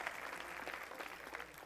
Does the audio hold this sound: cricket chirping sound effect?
no